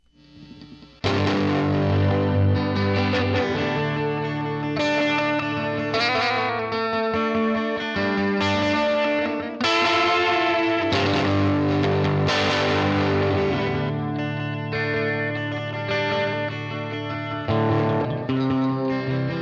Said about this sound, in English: I'll play some guitar. It's just some sort of ethereal, echoey, country-ish, three-chord progression. Dig it.